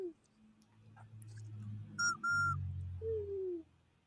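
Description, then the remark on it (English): Two short, shrill whistle toots sound back to back midway, loud, followed by a lower sliding tone over a low background rumble. “You want your whistle?”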